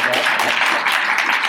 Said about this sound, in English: Applause for us.